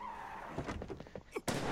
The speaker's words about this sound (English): How do mobsters die? In a hail of gunfire! That's how mobsters die. Oh, those are some nice guns.